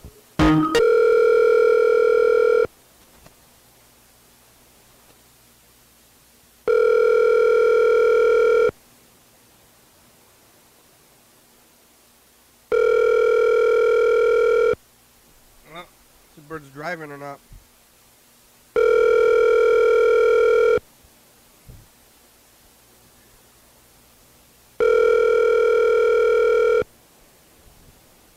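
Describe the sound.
A telephone ringback tone on an outgoing call sounds five times, each steady tonal burst lasting about two seconds with roughly four-second gaps; a voice briefly murmurs between two of the rings.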